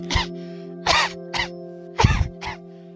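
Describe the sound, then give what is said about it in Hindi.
A child gives a run of five short coughs, dry and harsh, in an uneven rhythm with brief pauses between them, fairly loud over a faint steady hum, with no talking. “क्या हो अगर आपका बच्चा खांस खांस कर परेशान हो और आप उसकी खांसी ठीक करने के लिए उसे एक कफ सिरप लाकर दें, जिसे पीने के बाद खांसी ठीक होने का तो पता नहीं लेकिन आपके बच्चे की मौत हो जाए।”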